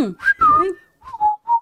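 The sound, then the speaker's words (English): Two people whistle a short, bright tune: a quick rising and falling phrase, a brief pause, then a few steady held notes. “I love that you both just start whistling.”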